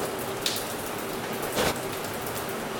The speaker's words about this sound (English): I park and cut the engine. The radio static goes silent, replaced by the rain on the roof.